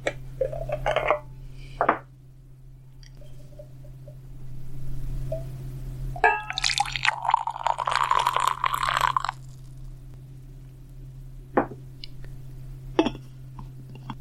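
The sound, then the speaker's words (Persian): Glassware clinks, then tea pours steadily from a single-serving tea bottle into a glass for about three seconds with a bright, gurgling splash, followed by a few more light clinks over a low steady hum. A real pour, not a sound effect. “از بطری چای یک نفرم لیوانم را پر میکنم. این یکی دیگر افکت صوتی نیست، واقعا همینجا فکنون لیوانم را پر میکنم.”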